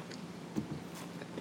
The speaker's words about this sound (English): Good news, Chance is awake and he is staring at me because he heard me singing and munching.